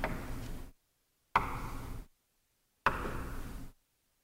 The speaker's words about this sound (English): Having taught his followers all that they should know about being his disciples, at the end of the Bible, Jesus himself comes to the door of the church and knocks.